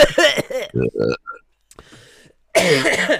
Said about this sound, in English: Yeah, that's a good cough. That I was trying my hard. You see, did you hear in my voice? I'm trying not to cough as I'm doing the outro.